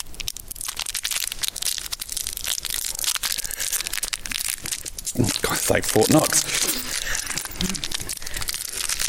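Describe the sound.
Continuous crinkling and tearing of the plastic wrapper of a wrapped chewy sweet being fiddled with and pulled at, loud and crackly throughout, with a person muttering briefly partway through.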